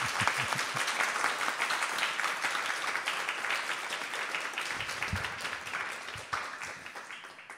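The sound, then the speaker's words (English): A group applauds steadily, dense overlapping claps forming a loud, even wash of sound that holds for several seconds before thinning slightly toward the end. “Okay, he wants to clap. Go ahead, start it.”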